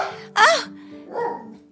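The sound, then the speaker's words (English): A puppy dog gives one sharp, high yip, followed by a softer, muffled sound and a faint steady hum in the background. “And can you hear our puppy dog making noise?”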